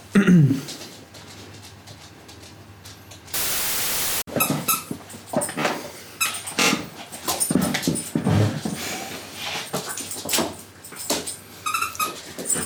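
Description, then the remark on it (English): A dog named Winnie worries a squeaky little donut toy over and over, with rapid high-pitched squeaks in frantic bursts, plus whimpers and panting, and a brief loud burst of noise partway through. “That is Winnie going absolutely mad in the background. Driving us up the wall today. Squeaking a little donut.”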